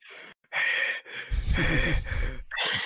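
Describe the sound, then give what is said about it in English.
A voice imitates heavy, raspy breathing heard in the background of a message, in a few drawn-out breaths, fairly loud, with a deep rumbling edge on the longer exhale in the middle. “Some heavy breathing.”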